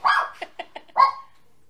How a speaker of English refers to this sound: So getting a little chihuahua that barks in the middle of our show. We love her. Well, she's defending us from the intruder.